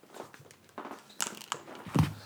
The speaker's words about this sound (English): Oh, giving up. Phones crunching and cracking, because that's what they do. Taking it to the other room.